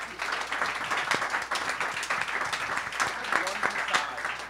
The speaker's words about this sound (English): Well, that's a round of applause for the end of round three.